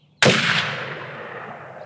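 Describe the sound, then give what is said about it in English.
A single pistol gunshot fired once into the sky in a canyon: one loud, sharp crack that bursts in suddenly, then a long rolling echo fades slowly over more than a second, with no voices. “He took another half step forward, aimed his pistol to the sky, and fired once.”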